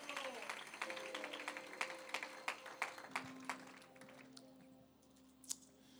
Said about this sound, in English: Somebody give the Lord a hand clap of praise tonight. Honor him with the fruit of your hands tonight. Magnify Jesus.